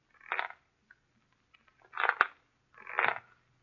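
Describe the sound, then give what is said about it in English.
A wooden rocking chair creaks three times at night, with no wind stirring, each groan short and scratchy, with irregular pauses of near silence between them and no voices. “On the fifth night of our wait, we heard the rocking chair creaking... Creaking, creaking.”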